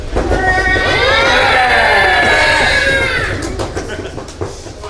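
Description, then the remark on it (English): A live audience imitates an elephant's trumpeting and stamping in a loud, wavering group blare lasting a few seconds, with low thumping like stamping underneath that fades out at the end. “Trumpeting followed by stamping.”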